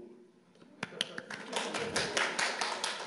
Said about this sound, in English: Woo! I'm clapping my wife for putting up with me for 25 years.